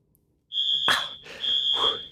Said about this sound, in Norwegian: I det de forlater leiligheten, så utløser den siste jenten av de 9 brannalarmen.